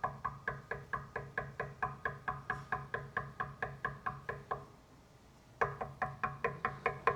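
Rapid, steady knocking on a door, many sharp raps in a relentless rhythm, pausing briefly before resuming just as insistently. Fairly loud, with no voices.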